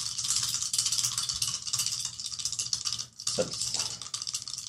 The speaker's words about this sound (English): It's very roll under with disadvantage. So roll 3 dice. Pick the 3 dice. 3 dice.